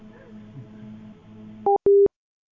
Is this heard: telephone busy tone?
yes